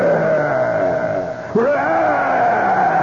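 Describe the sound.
A loud, drawn-out vocal roar imitating a lion, drenched in echo from an echo chamber, holding for a few seconds, briefly dipping, then surging back with rising pitch.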